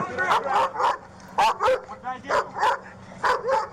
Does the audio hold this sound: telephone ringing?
no